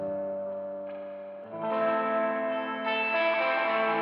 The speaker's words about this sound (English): And then there's a just regular old reverb. Turn the mix way up on that.